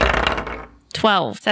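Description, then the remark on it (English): A short burst of dice clattering and rattling across a table as players roll initiative in a game of D&D, quickly fading out, followed by someone starting to speak. “Everyone roll initiative.”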